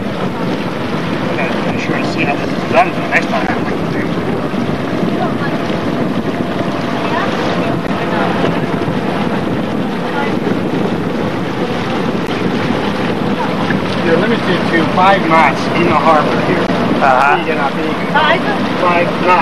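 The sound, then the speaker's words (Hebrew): A sailboat motoring under engine power: a steady low drone runs throughout, with gusty wind buffeting the microphone and the wash of water alongside the hull. “קיבלנו את השייט, אנחנו עדיין על מנוע.”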